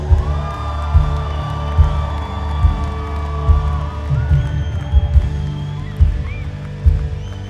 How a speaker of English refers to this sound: Now somebody release a shout in this place.